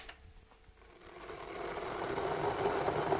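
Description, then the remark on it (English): An electric kettle heating water for a bicarbonate of soda solution, a steady rumbling hiss that swells gradually louder over a few seconds, with no voices. “And just while the kettle's boiling, how much bicarb are you going to use?”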